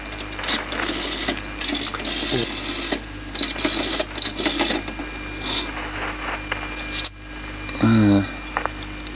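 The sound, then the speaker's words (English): A telephone call to a night line rings once in a short, loud electronic burst near the end, after a stretch of steady clattering and mechanical noise with a constant low hum underneath. “It's ringing anyway.”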